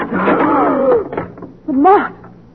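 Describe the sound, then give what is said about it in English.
A door creaks open in two drawn-out, groaning squeals, the first long and wavering, the second shorter after a brief pause. Fairly loud, with no talking over it. “Where does that door go? Into an all the least outside. Right, open it.”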